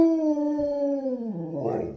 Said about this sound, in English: Ah, the wolf howl. Perfect. A fine choice of nonsensical sound effect.